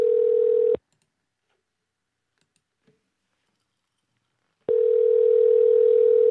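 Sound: telephone dial tone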